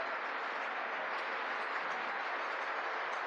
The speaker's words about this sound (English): The United States is leading a 59-nation diplomatic coalition against the socialist dictator of Venezuela, Nicolas Maduro. Oh, look, they all applaud.